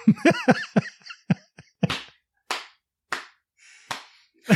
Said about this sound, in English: That's me slapping my leg.